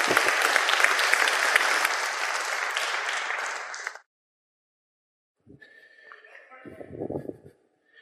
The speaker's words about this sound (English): Give everybody a round of applause there, folks. That was great.